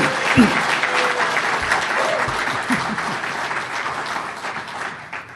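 A crowd at a morning event breaks into sustained applause for the organizer of this year's program, dense rapid clapping that holds steady for several seconds before gradually thinning out toward the end.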